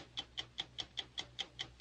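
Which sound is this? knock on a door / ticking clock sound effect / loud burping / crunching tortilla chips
ticking clock sound effect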